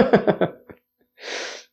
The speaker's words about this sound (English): I got a cough. 1 second.